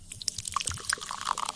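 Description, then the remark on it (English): A fizzy drink pours into a glass, liquid splashing as dense, crackling bubbles pop and hiss continuously, with no voices. “It's a fizzy drink being poured into a glass.”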